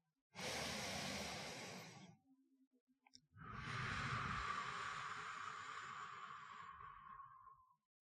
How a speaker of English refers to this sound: I forgot how much good just breathing can do. Slowing everything else that's going on in your life down, shutting it out of your mind just for a few moments to take a few deep breaths, to drink in a few good deep breaths of air.